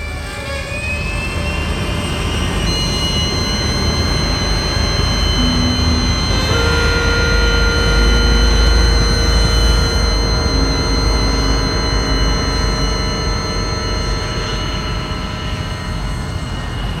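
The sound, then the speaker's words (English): Jet engines of two A-10 Warthog attack planes drone loudly and steadily, a deep rumbling roar topped by a high, sustained turbine whine, with no voices. “I'll be performing tomorrow night of this production that involves the recordings of two A-10 Warthog attack planes, an AeriVac helicopter, and a live musical ensemble.”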